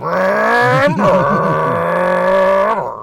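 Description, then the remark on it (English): A voice imitates a car engine revving, with a rough, buzzy growl that climbs and wobbles through a few throttle blips before settling into a steady, loud drone. “So, unfortunately, your situation is a little bit different because you're not able to turn the key and hear the engine come to life yet.”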